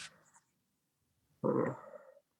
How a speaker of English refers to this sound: Of course, he woke up, but this dude snores. He was snoring. He snores so loud.